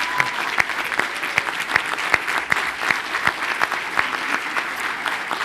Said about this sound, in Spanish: Démosle un aplauso a estos maestros.